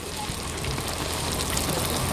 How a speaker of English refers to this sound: Here, fresh fry bread sizzles in pans of cooking oil, served up with maple sugar and strawberries, or taco style, with bison meat.